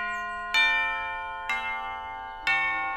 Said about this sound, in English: Oh, over here, there's a doorbell. There's a very ornate brass doorbell. I'm going to go ahead and push it.